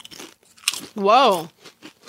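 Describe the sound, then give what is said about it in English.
Crisp, crackly bites of a Lay's potato chip, a few quick irregular crunches, followed by a drawn-out voiced exclamation that rises and falls in pitch before the crunching resumes faintly. “Although I'm going to try a Lay's and see if it has the same thing.”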